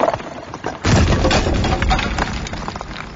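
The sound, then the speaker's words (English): A heavy chunk of masonry, kicked off a stairwell, falls all the way to the bottom with a sudden, massive crack, followed by a loud, rumbling echo that lingers and slowly fades up the well. No one speaks. “but at one point you're trying to be really quiet, and somehow in your creeping you manage to kick a big chunk of masonry off the stairwell, and it falls down all the way down to the bottom and makes this massive crack noise which echoes up the well.”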